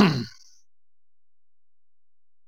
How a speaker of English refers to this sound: And there's a cough there. You can tell everyone why. Well, I've had a bit of a runny nose and a sore throat recently, everybody.